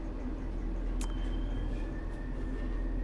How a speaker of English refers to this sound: This is one of the dangers of podcasting on the train, is I lose track of where I am.